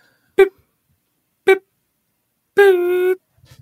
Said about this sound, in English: We're gonna play a series of beeps, and then just do the beeps.